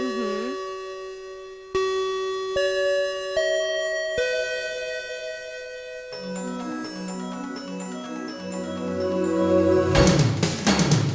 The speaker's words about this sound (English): And that bell means you've made it to the end of another episode of the After School Anime Club